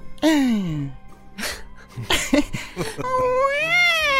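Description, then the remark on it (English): A woman crying at a front door, a high, wavering cry that bends and slides like a cat's meow, with a falling wail, a few sharp broken sobs, then a long rising moan, loud. “She sounded like how my cat was supposed to sound.”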